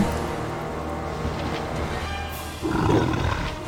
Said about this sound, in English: That's our dire wolf, yeah.